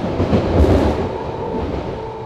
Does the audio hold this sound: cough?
no